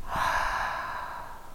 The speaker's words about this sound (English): If you think about inhaling through your nose and then exhaling through your mouth like you're fogging up a pane of glass.